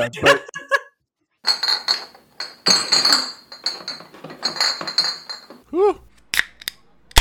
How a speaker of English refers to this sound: You know, I was gonna clink my full White Claw with my empty White Claw and give you the clink sound, and then, but you know what?